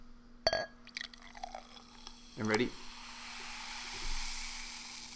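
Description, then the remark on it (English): Ginger soda pours into a glass, settling into a soft, steady fizzing hiss over a few seconds, with a short spoken question partway through. “Yeah, hear a little bit more pour here.”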